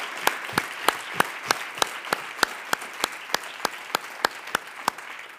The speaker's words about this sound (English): And so this morning when we're going in the teens, when you were sleeping and they were waking up and moving some things around, can we just put our hands together for the way in which we just appreciate them? Come on.